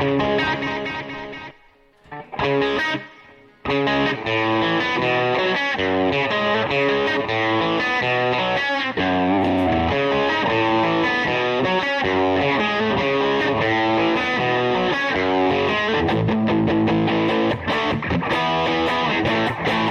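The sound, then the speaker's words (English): An electric guitar plays with a washy reverb and a slightly distorted tone, sustained chords ringing continuously and loudly for the whole stretch after a brief pause near the start. “Put some reverb on there.”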